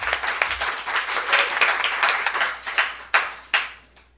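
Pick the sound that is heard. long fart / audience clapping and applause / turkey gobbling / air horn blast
audience clapping and applause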